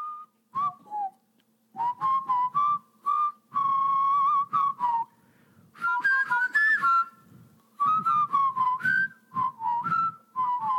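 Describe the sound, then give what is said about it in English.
A lively whistled melody in a film scene plays in short, bouncy phrases with a steady marching rhythm as boys march in, clear, over a faint low background murmur, with no talking. “And then all of a sudden, you hear some whistling.”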